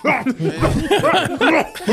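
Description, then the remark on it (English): A voice imitates a coworker's cough at work, a series of rough, harsh coughs, several bursts in a row, loud and strained, with no ordinary speech in between. “Dude, like, at work has been, he's had a cough this entire week, and I'll just hear him over there in the distance just.”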